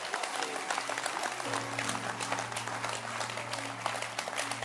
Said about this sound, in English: Can you clap your hands for yourself?